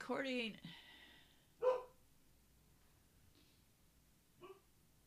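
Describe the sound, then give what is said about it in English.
A dog barks outside, a long harsh bark followed by two shorter, sharper ones spaced a couple of seconds apart, sounding muffled against a quiet background. “I don't know why he's out there barking.”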